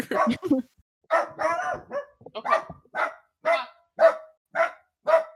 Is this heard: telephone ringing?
no